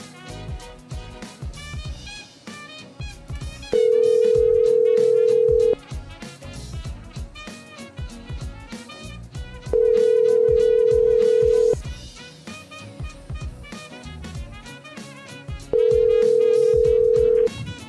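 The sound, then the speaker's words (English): A phone line rings out while waiting for an answer: three long, steady ringback tones, each about two seconds with pauses between, clear and prominent over busy background music. “I really want him to answer, but I'm a bit worried now.”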